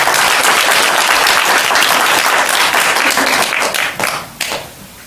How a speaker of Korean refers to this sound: 큰 박수 보내주시기 바랍니다.